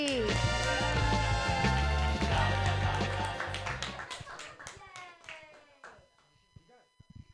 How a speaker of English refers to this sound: Hey, everybody, clap wildly for little Anthony.